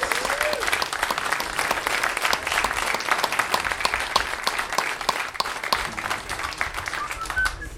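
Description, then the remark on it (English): An audience breaks into steady applause, dense overlapping claps sustained at an even, fairly loud level for several seconds with no voices standing out. “Round of applause.”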